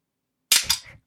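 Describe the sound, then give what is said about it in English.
A beverage can pops open with a sharp, bright crack, followed by a short fizzing hiss that tapers off within half a second. “Open the bev.”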